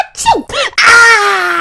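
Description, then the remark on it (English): A voice acts out a sneeze: a couple of rising, wavering breaths build up, then burst into a loud, drawn-out 'choo' that trails off. “Oh, Lee sneezed, and at the same time, he nicked himself on the big toe.”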